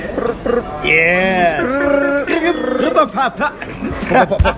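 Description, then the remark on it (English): A voice imitates a sputtering, broken-down car engine: a strained, growling drone that bends up and down in pitch, then breaks into choppy, uneven bursts before stopping. “But then my most serious one, yeah, it does sound like a car that's fucked up at the moment.”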